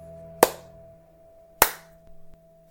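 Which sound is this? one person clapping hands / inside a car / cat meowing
one person clapping hands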